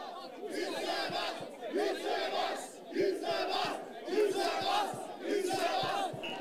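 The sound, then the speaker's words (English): A large protest crowd in Australia chants in unison, voices rising in repeated rhythmic bursts roughly every second and a half, loud and steady with a dense roar of many voices underneath. “the people of Australia have chosen a chant that has come up multiple times. And we'll be able to hear it here in just a second.”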